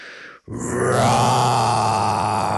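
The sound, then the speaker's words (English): A person imitates a roar: after a brief opening sound and a split-second pause, one long, loud, gravelly vocal roar holds steady for about two seconds. “All we did was promise not to do the roar.”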